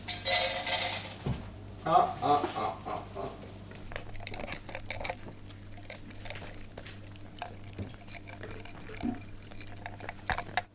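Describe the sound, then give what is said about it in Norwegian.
Pots and cutlery clink and clatter as a man cooks food on a stove while four cats sniff around, in irregular bursts, louder at the start and then scattered sharp metallic taps over a low steady hum, with no talking. “De fire kattene snuser etter maten han har på komfyren”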